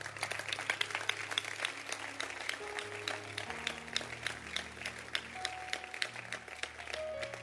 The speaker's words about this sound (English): The depiction was very, very poignant. The depiction was beautiful. Clap for them.